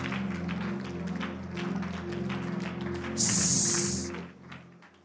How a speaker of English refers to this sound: Is it raining?